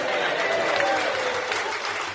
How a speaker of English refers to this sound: Can I get a round of applause for my glasses?